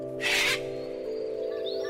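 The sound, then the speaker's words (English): A single harsh, raspy cockatoo screech bursts out loudly near the start, followed by faint bird chirps over a steady low background hum, on Wadjugan country. “Cockatoos?”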